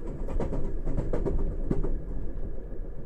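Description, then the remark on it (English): A steady low rumble of a train rolling through hills of the English countryside, with a series of light clicks and clatters riding over the continuous drone, no voices. “As the train rolled through hills of the English countryside, I couldn't help but notice how the various stops were well-suited to this story.”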